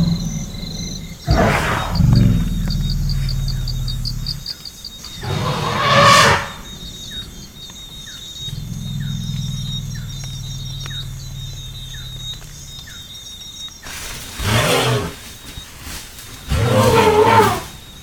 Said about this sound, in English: Because you had that elephant thunder, right? The trumpeting with the thunder? Yeah. That was like the most badass thing I've ever heard.